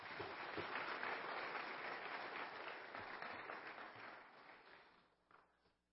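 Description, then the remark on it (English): An audience applauds a group of students with dense, steady hand clapping that holds strong for several seconds, then thins out and fades, with a few scattered claps at the end. “One more hand clap for all these students.”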